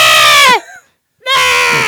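A young goat lets out two loud, piercing screams separated by a brief silence, the first cry bending downward in pitch as it breaks off.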